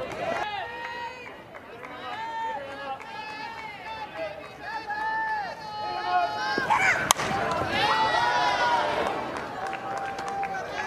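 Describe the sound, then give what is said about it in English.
A single sharp crack of a softball bat slapping the ball during a softball game at LU cuts through steady commentary, followed by a livelier swell of crowd noise in the background. “And there's a slap.”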